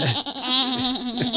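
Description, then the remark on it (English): A person imitates a goat with one long, loud, quavering bleat, nasal and wavering in pitch, lasting about a second and a half with no talking. “If we need a goat impersonator, we know where to go, yeah.”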